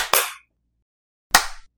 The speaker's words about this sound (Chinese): 3, 2, 拍手，3, 2, 1, 拍手。